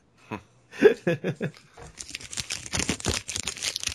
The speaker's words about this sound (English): I'm sorry, I heard a crackling into the microphone. And I thought, uh-oh, are we getting some ASMR right now?